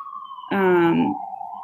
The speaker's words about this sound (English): She's in Brooklyn, folks. Ignore the siren.